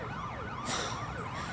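emergency vehicle siren wailing

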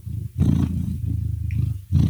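cat growling

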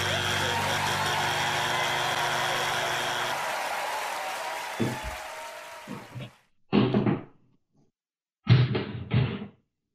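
door being shut

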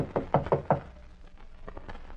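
knocking on a door

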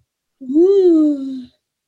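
yawn

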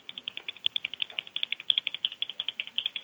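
pen clicking

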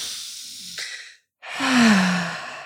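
deep breath taken together

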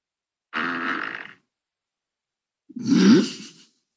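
fart

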